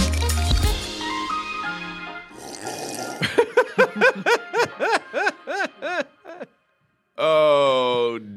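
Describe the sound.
A loud, wet slurp of a drink, followed by a burst of rhythmic, high-pitched giggling and a short voiced noise at the end.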